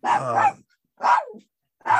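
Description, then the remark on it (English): A dog barks three times in quick succession, each bark loud and harmonically rich, separated by brief silent gaps with no talking. “My dog had enough of this.”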